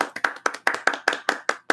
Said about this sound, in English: All right, what a sound! What a quality applause with this new sound.